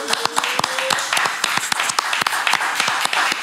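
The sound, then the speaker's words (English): Audience applause rings out: a steady wash of many hands clapping, with sharp individual claps popping through, and a brief cheer or whistle near the start, sustained and fairly loud throughout. “Yeah, goddamn, make some noise for that.”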